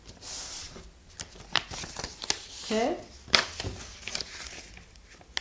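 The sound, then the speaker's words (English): Paper handling: crisp rustles and sharp creasing snaps as a sheet of paper is folded and folded again to try to make it stand balanced, with a brief murmured voice partway through. “Okay, I'm going to fold it. I'm going to fold it again.”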